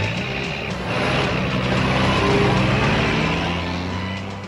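A steady, loud rumble of a traffic jam, with idling truck engines, air brakes and low droning vehicle noise filling the scene continuously.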